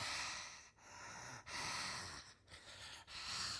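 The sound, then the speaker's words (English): A voice imitates heavy breathing heard down a phone line: several loud, raspy inhales and exhales in a steady rhythm, with no words spoken. “And sure enough, I continued to hear this breathing.”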